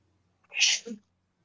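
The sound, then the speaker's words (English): A single sharp, fairly loud sneeze, with a bright hissing burst followed by a short lower exhale, standing alone in an otherwise quiet moment. “Bless you.”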